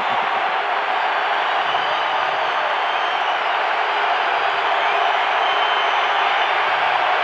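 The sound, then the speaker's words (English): A large basketball arena crowd roars and cheers steadily after a missed free throw in a Dallas–Utah game, a dense, sustained wall of voices with scattered whoops, loud and continuous without any clear break. “Crowd wants Chick-fil-A.”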